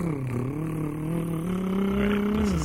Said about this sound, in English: Is this that motorcycle that we were talking about? This is revving itself closer and closer to insensitive.